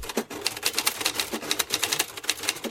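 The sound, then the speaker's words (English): Rapid typewriter keystrokes clatter in a quick, steady burst of sharp mechanical clicks, fairly loud, with no voices. “Yep, I type really fast. You're good. Does anybody even have a typewriter anymore?”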